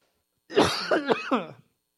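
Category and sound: human body sound, cough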